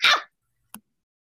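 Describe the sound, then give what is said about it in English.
A pet pup barks twice: one loud, sharp bark, then a shorter, quieter yip after a brief pause, with silence around them and no talking. “No, that's my pup.”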